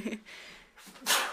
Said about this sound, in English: oh god, I gotta sneeze, hold on.